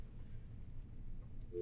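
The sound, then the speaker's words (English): A low, muffled hum fills most of the moment before a steady telephone busy tone cuts in near the end, after a call is hung up, sounding thin and boxy through a phone's speakerphone. “Nobody's there. I think we just hung up on it.”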